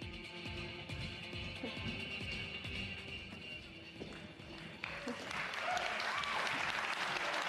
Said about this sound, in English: Thanks for the warm applause.